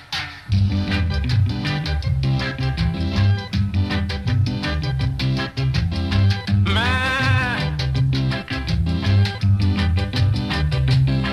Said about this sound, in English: You'll see what I mean about the goat. Or was it a sheep? Don't know.